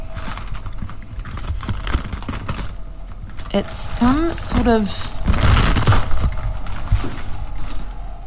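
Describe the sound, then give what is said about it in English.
Crinkly rustling of an old plastic bag being rummaged through in a cleaning cupboard of a ladies' bathroom, with irregular crackles and scrapes running throughout as a person speaks briefly partway through. “Okay, this plastic bag looks like it's been here for numerous years.”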